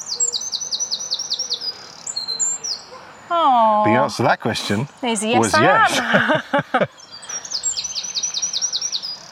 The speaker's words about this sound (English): It's a tiny little brown bird. He's singing his little heart out